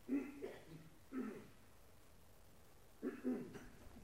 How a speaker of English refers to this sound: I may cough up a lung before we're done. It'll be fine.